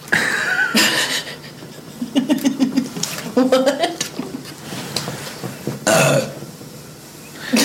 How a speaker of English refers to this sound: Dude, we're gonna do clips of you burping. Because I've got like 20 of them.